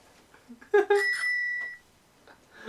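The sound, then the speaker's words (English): Two quick rings of a bicycle bell, the second one ringing out with a sustained metallic tone that fades after a second or so, heard clear with faint background noise. “How many bells do you want?”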